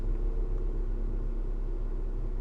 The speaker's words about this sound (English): I just thought about it, y'all. If y'all can hear the air as I'm talking, like, I'm in the car. I'm sorry.